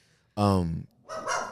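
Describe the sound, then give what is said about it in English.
A dog barks loudly, a long harmonic bark followed after a short pause by a second, rougher one, with no other sounds around them. “Yeah, your dogs agree.”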